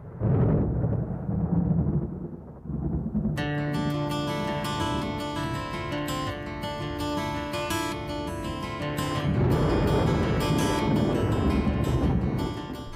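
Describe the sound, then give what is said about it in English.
A deep, rolling rumble of a thunder sound effect opens a song on its own for a few seconds, before the guitar starts, then sustained musical tones come in over it while the low rumble keeps going underneath. “Opens with the thunder sound effects, right?”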